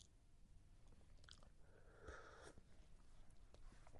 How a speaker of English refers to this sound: You hear me sipping back on some green tea.